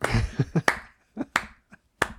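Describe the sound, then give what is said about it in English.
A single person claps their hands about eight times in an uneven rhythm, sharp crisp smacks in short bursts separated by brief pauses, with no talking. “I said I'd give you a round of applause, and I'm doing it because that was a good one.”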